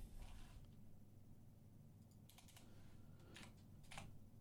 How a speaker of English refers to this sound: Moving on. If I could find where I'm typing.